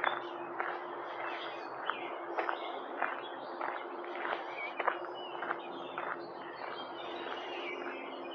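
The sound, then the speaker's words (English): Birds chirp and twitter continuously outdoors, a busy steady chorus at moderate loudness, with short sharp ticks or steps scattered through and a low steady hum underneath. No one speaks. “Listen to all this nature.”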